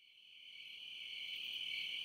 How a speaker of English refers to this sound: The fuck is that? Crickets. There are people listening to this laughing at that joke and offended that you're playing crickets. Why? There's a glitch in the system here. It's all of a sudden, it's playing by itself.